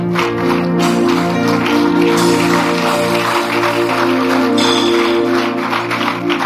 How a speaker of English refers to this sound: Rise up on your feet right now. Oh, you can clap to God.